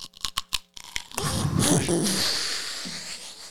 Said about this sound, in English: Gonna let you finish crunching. Yeah, that's what it sounds like when he's crushing. It sounds like he's chewing celery. If you hear that in your town, you know that Harland Williams is in some comedy club somewhere.